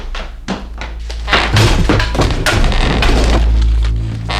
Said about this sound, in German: Polizei, aufmachen! Ich glaube, ich habe da was gehört drin. Tür aufbrechen.